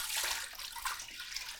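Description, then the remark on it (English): Water pours steadily from a tap into a pot, a few litres to be brought to the boil, a continuous hissing splash with a slight rise and fall, heard on its own with no talking. “So to start off with, we're just going to get a few litres of water on the go.”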